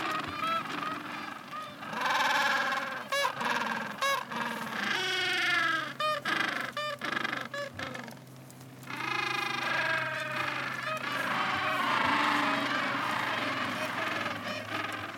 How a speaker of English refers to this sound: Quite a spectacular call of these gentoo penguins.